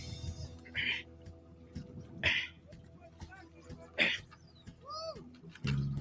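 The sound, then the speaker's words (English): Several strained vocal bursts, grunts and drawn-out groans of physical effort from people on a fishing trip hauling in a strong fish, come in irregular spurts over a low background rumble, moderately loud. “A lot of grunting and groaning here.”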